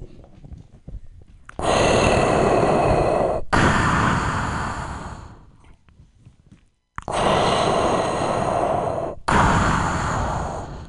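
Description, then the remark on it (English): A person doing a comedy impersonation imitates heavy mechanical respirator breathing: two slow, loud inhale-exhale cycles of harsh, hissing breath with a short pause between them and no talking. “He's not smoking yet, he's just breathing.”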